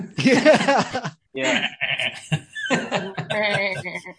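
A series of loud, wavering sheep bleats comes in several bursts separated by brief pauses over a few seconds.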